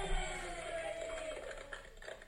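People clapping and cheering together in a steady, noisy wash of voices and hand claps, with a few sharper claps standing out toward the end; fairly quiet overall.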